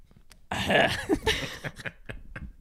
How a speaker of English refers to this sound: Did you just cough on me?